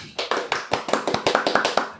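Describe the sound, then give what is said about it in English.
A quick burst of hand clapping, about a dozen sharp claps over two seconds at a brisk, slightly uneven pace, moderately loud with no voices. “Claps to us.”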